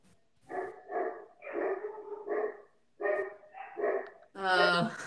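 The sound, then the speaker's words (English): Dogs bark loudly in a series of short, repeated bursts, building to a sustained, harsher stretch of barking at the end. “My dogs are very loud right now.”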